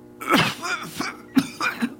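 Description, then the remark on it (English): A woman's fairly loud fit of coughing: several harsh, raspy coughs in two quick clusters, with throaty, voiced edges and brief gasps between, and no talking. “She was caught up in a fit of coughing and could not speak for some time.”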